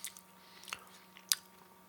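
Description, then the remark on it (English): Crisp crunches of someone chewing deep-ridged, craft-beer-flavored potato chips: a few sharp, brittle snaps spaced irregularly over a quiet background, with no talking. “I will say, the chips themselves, with those very deep ridges, very nicely crunchy.”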